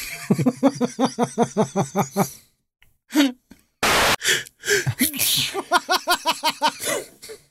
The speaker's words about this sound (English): That was the most dramatic fucking sneeze I've ever seen in my life. I'm sorry. They should make an Oscar category for that.